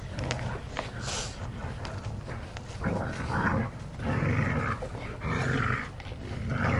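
Dogs growl and snarl in rough, rumbling bursts, loud, with brief pauses between surges as they play tug of war in the back.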